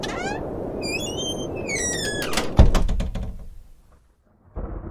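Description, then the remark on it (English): A house door slams shut with a single heavy, booming thud that rings briefly, cutting through steady rain-like ambience and high whistling calls before things go nearly silent. “Now open the door. I didn't close it. I can't get it open.”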